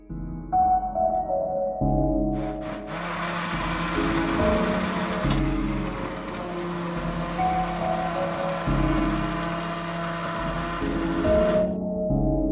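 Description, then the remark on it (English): A blender motor runs steadily, starting with a low hum that quickly rises into a loud, dense whirring roar of churning, then drops back to a hum near the end. No one speaks. “Yeah, I can probably get a good blender sound.”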